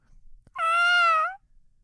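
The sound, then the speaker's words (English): A person's voice imitates the call of a big white seagull: one loud, nasal, sustained squawk lasting under a second, holding a fairly high pitch that sags slightly at the end, with no talking over it. “I want you to visualize a seagull. Big white one coming at you.”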